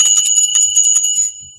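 Bells ring out in a quick, shimmering cluster, bright high tones struck repeatedly and sustaining together, then fading away toward the end.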